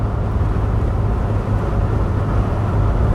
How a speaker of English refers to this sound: See, now we have this moment of silence. Where you can just hear the wind rustling through my poorly sealed car. My car, the windows are rolled up, the doors are closed. Okay, obviously the doors are closed. I'm going 75 on the freeway.